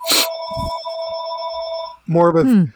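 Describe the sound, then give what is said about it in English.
A landline telephone rings with one sustained, bright, buzzing tone lasting about two seconds after a sharp start. A person then briefly talks. “I haven't heard a landline in so long. Like, this is almost shocking to me.”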